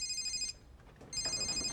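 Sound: phone ringing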